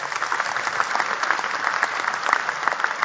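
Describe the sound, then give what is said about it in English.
A church audience claps their hands for a good shepherd in a steady, dense burst of applause, many overlapping sharp claps forming a continuous bright wash with no voices standing out. “Clap your hands for a good shepherd.”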